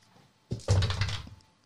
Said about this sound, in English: That's the second time I've rolled perception. Your dice need to go in dice jail.